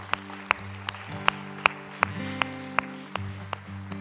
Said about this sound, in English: Guys, that's the greatest decision that you could ever make. And yes, we can applaud that. That's awesome.